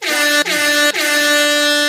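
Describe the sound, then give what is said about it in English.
Three loud, blaring air horn blasts fire in quick succession, each a brassy sustained tone separated by a split-second gap, piercing, with no talking. “Triple air horn.”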